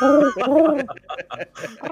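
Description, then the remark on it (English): A voice imitates an owl with two quick, loud rising-and-falling hoots, followed right away by a person talking. “I get a classic owl noise.”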